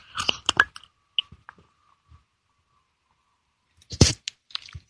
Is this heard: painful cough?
no